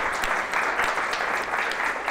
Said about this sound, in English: I just want to give everyone another round of applause for powerful talks.